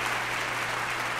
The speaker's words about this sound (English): Anything you hear tonight may not even be real. Not real applause.